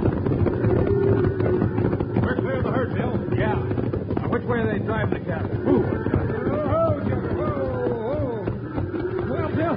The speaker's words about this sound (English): Wild Bill Hickok and Jingles are surprised by a sudden stampede started by a volley of shots. With the trail boss Scotty, they swing their horses in front of the galloping herd, hoping to turn it before they're trampled under the thundering hooves.